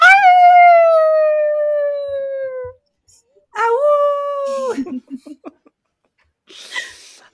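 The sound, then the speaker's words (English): Voices imitate dogs howling: one long, loud howl that slowly falls in pitch, then a second shorter howl, followed by a few brief yips and a breathy noise. “Many other dogs follow suit. The other adventurers join in this howl.”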